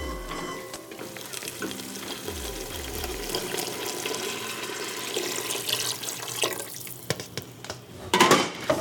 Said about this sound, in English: Holy! There's chicken stock all over my kitchen. I just spilled chicken stock all over my kitchen floor. In an attempt to make gumbo, one of the 333 recipes in Lena Richards' 1939 cookbook.